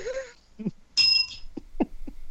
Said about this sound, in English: Did you just ding yourself? No, that was me. Okay. There are two bells on this podcast, at least.